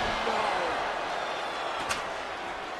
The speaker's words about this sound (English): Steel chair to the skull.